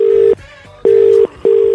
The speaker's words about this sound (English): an interview by ringing up a radio station who won't be expecting the call. However, we do have hotline numbers of every radio station in the country here in the Rubber Room, including this one. Let's see if we can get Susan Boyle on the air.